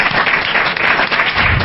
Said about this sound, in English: Thank you, John. Can I give a round of applause for John and the panel?